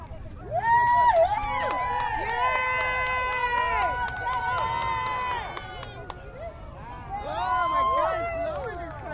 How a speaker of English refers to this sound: Gone behind the building now. Everybody is running to the other side of the building.